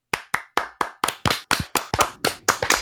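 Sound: group clapping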